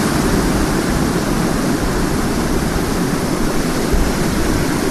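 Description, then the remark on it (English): A loud, steady roar of rushing waterfall fills the whole stretch, a dense, unbroken wash of water noise that stays constant from start to finish with no voices over it. “All right, I'm above the waterfall.”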